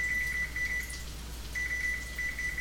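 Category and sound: household object, kitchen timer beeping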